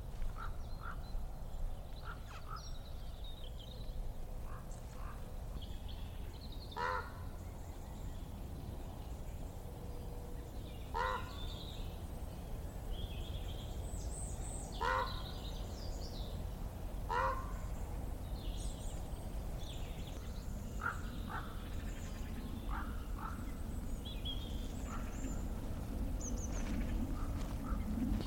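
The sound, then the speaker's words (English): Ravens call with harsh, croaking notes, repeated every few seconds over a steady outdoor rumble of wind near Abergavenny. Some calls come in quick pairs, and no one speaks. “Bit of raven calling there, which was really, really lovely to hear.”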